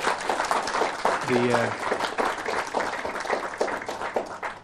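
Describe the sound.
A crowd applauding steadily at the end of a retreat, dense overlapping claps at a lively, sustained level, with a brief voice rising faintly through the clapping.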